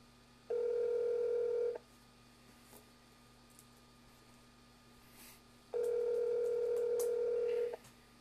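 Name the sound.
phone dial tone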